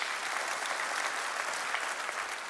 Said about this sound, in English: Come on, clap your hands. That's good news.